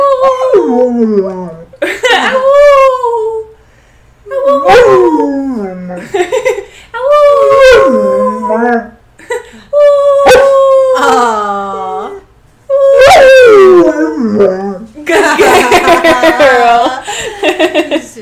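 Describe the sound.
A dog howls in a series of drawn-out, wavering cries with rising and falling pitch, mixed with a person's voice howling along in imitation between the bursts.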